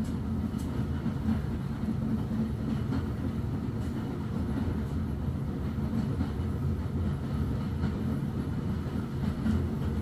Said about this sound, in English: You admire the little plumes of steam escaping from various little pipes, valves, and taps as the behemoth train sits faithfully at the platform's side.